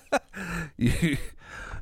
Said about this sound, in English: I have a cough now, too, which is fun. Today, I just feel like there's shit in my throat. You know how you always have to clear it?